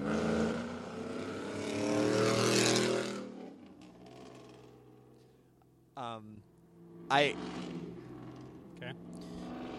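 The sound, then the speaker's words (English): A loud truck with an aftermarket exhaust roars past, its deep rumbling engine note swelling for a few seconds and then fading away, followed by a quieter stretch with a few brief sounds. “I suspect, because this truck's going to go by, it's going to be very loud.”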